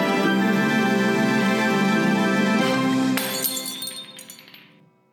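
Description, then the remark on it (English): Glasses clink together in a toast, a bright ringing chime that builds to a sharp crash of glass and then fades away over a couple of seconds, with no voices. “as we end every episode, we raise our glass, and we say, Zoot-doo-wop, bump. Cheers.”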